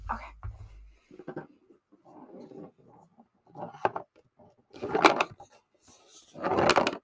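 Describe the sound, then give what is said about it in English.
A pencil rolling and clattering around inside a box, with irregular scraping, rattling bursts that swell into two louder tumbles near the end. No voices are heard. “I'm going to roll them around in the box. Okay. And I would like for you to guess what I have in my box.”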